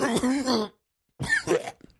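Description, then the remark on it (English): Two loud bursts of coughing separated by a brief silence, the second ending in rough throat clearing. “That was real. And I didn't do any performative coughing.”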